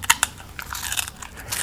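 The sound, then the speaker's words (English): Someone bites into a crunchy rice cracker: two sharp, crisp snaps followed by a stretch of brittle, crackling chewing. There is no talking. “And that's a rice cracker.”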